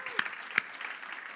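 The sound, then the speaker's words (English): A church audience clapping: a dense, steady patter of many hands, fairly quiet, with a couple of sharper individual claps standing out early on. “Can we just clap for”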